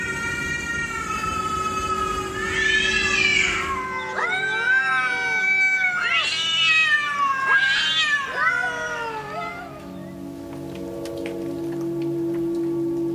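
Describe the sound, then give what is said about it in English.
Neighborhood cats yowl back and forth, as they do when getting ready to fight or mate, in long, wavering, rising-and-falling wails, several overlapping drawn-out cries over a steady background hum, then the yowling stops and only the hum remains. “The other night, some neighborhood cats were making those noises they make when they're either getting ready to fight or get frisky.”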